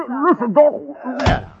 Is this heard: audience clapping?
no